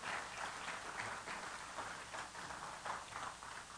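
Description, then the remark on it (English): A church audience claps steadily for a few seconds during a morning service, a dense, crackling patter of many hands at an even level with no voices over it. “Let's give them another applause.”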